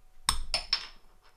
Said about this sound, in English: Lovely sound of a bottle top hitting the table. It's the last of my Heineken Silvers.